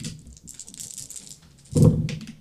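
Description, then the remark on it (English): Steady clattering of six dice shaken together in a hand or cup, then a heavier tumbling burst as they spill out and roll onto a surface. “Roll me 6 dice, please.”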